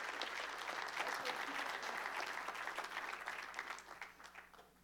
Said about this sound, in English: And so I want you to give a big round of applause to Pastor Mozart, if you come on up here.